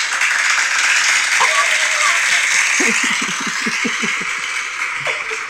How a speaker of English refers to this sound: I love it. I'm gonna get him an applause.